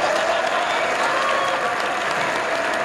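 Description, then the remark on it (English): Steady, dense applause from a crowd, many hands clapping continuously at an even loudness for the whole few seconds, with faint cheering mixed in and no clear speech. “Now we got applause.”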